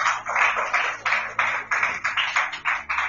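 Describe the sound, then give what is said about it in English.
An audience claps together in a steady rhythm, about three claps a second, each clap a bright, crisp burst of many hands. No one speaks over the clapping. “Can we clap on Jesus?”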